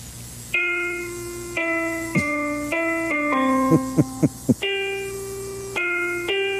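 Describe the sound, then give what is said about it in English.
A patriotic song played as a musical performance, one note at a time with one finger on an electronic keyboard, with steady sustained tones, a few quick short notes midway, and no singing or chords. “He's just using one finger on his keyboard.”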